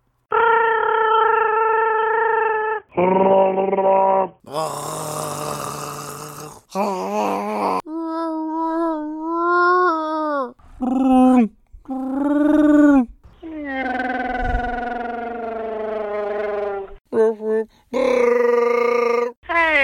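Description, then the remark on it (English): A string of ten people's Wookiee roar impressions, sent in via Instagram and Facebook and strung together, each a loud, gravelly, wavering howl with strong harmonics, some rising and falling in pitch, played back to back with brief gaps. “we got 10 wonderful Wookiee impressions, and I strung them together for you guys”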